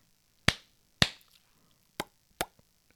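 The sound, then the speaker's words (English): Four sharp percussive hits from hand claps and mouth pops, given as a sequence of sounds for a listener to remember: two in quick succession, a short pause, then two more, with quiet between them and no talking. “Okay, so we had clapping hands and popping your mouth.”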